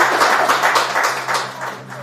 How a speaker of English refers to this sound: And a round of applause for it.